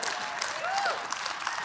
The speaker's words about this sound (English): If you're going to clap, clap like you mean it. That's a Vikings clap.